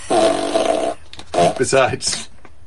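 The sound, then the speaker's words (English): A novelty fart machine is set off by pushing its button. It gives a loud, buzzy, raspy blast lasting about a second, followed by a short burst of sputtering, voice-like noises. “The fart machine just stops and stuff. You push the button, but it really just does what it wants.”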